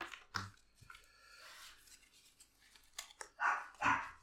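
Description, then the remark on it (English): A dog barks twice in quick succession near the end, sharp and fairly loud, after a stretch of quieter shuffling and faint noises. No one speaks. “Bloody dog.”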